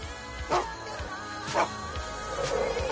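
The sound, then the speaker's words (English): Coyotes in Central Park yip and bark in a handful of sharp, high bursts spaced roughly a second apart, moderately loud against a steady low background with no talking. “No, they're not dogs, they're coyotes.”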